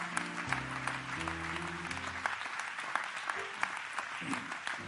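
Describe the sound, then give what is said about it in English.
A crowd claps steadily in praise to the Lord, a dense wash of many hands applauding together, while sustained organ-like chords ring out underneath for the first couple of seconds. “Clap your hands to the Lord and give Him praise right now.”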